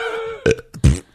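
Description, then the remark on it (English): A loud burp with no talking: a brief droning tone, then two gurgling, throaty bursts, the second deeper and stronger, all over in about a second. “I asked, is this the new way you burp now?”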